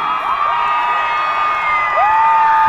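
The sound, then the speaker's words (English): A crowd erupts in loud, sustained cheering, with high-pitched whoops and shouts rising and sliding above a dense wash of voices and clapping that never lets up. “Applause.”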